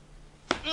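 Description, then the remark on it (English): A single sharp smack of a nurse's fist striking a man's face, followed by a short voiced grunt or groan that trails off. “You're listening to an Asian nurse punching a guy in the face.”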